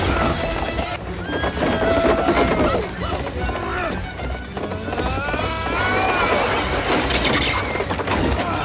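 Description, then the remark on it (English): A horse whinnies repeatedly over a steady clatter of hooves clip-clopping during a horse race, as a white horse catches up fast, loud, with dense, busy background noise throughout. “And the white horse is catching up fast.”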